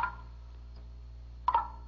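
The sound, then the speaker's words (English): Two clear, ringing water drops plink about a second and a half apart as water drips off a big leaf, against a low steady hum, each a crisp little splash that fades quickly. “Water. I hear water. It's water. Dolly. Dolly, don't go out there. It's water. It's dripping off that big leaf.”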